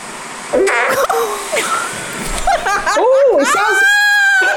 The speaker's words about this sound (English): That sounds like a bum laughing. That sounds like a bum who's heard a really rude joke and has literally just started laughing. That sounds like mum laughing in a classroom.